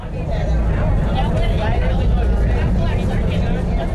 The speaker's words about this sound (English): are at 9th Avenue and 34th Street. We're on the bus. We are headed to DragCon.